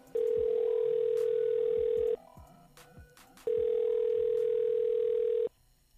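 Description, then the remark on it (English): A telephone ringback tone heard over the line as a call is being dialed on the new Hot 101.5 and The Miguel Show: two long, steady electronic rings separated by a short pause, fairly loud and with no talking. “Okay, JR, so while we are dialing”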